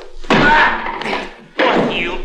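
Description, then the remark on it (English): A sharp kick to the back legs of a chair tilted against the wall, followed by the heavy, clattering thud of the chair toppling backwards onto the floor, two loud impacts about a second apart, each with a short rattling decay. “A sudden kick on the back legs of the chair when he was tilted would certainly give me an advantage.”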